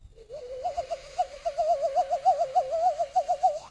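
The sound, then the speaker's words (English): A person imitates a bird call with a close, sustained warbling hoot whose pitch wobbles rapidly up and down for a few seconds. No one speaks over it. “Making a nice, getting all your friends to learn how to bird call?”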